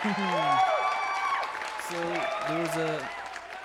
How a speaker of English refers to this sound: Let's get into the show. Yep. Round of applause for us.